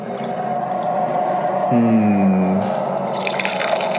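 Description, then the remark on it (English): Beer is poured into a glass, a steady gurgling stream whose pitch rises briefly as the glass fills, then trails off into soft fizzing and drips. No one speaks. “Pouring myself another one.”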